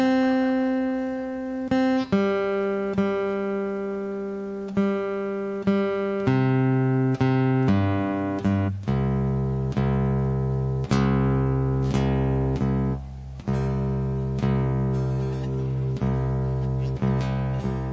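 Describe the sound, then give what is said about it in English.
A guitar being tuned with an electronic tuner: strings plucked and left ringing, with sustained notes that shift slightly in pitch from one pluck to the next, played alone with no talking. “My tuner isn't being cooperative.”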